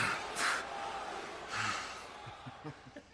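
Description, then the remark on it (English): Brock Lesnar breathes heavily in two loud, breathy exhalations, followed by a few short, low grunts, with a faint crowd murmur in the background, during a promo as Paul Heyman hypes him up. “A lot of grunting. Brock is just breathing heavy.”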